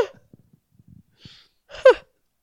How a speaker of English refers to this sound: That was the fucking weirdest noise you just made. I was laughing and then I yawned. I yawned and I laughed and I think I died a little bit.